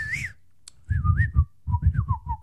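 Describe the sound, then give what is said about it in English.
A person whistles a quick series of warbling, rising-and-falling tones in short bursts, mimicking the chirpy beeps of the Star Wars robot R2, with a low rumbling hum underneath. “I think they might have added an R2 whistle, though, instead.”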